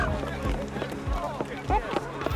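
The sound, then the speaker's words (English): Chickens squawk in short, rising bursts as pirates chase them off a ship's decks, amid hurried running footsteps thumping, goats bleating, drunken laughter and excited voices and commotion mixed throughout. “Drunken laughter vies with squawks and bleats as the pirates chase chickens and herd goats off the decks and towards the galley.”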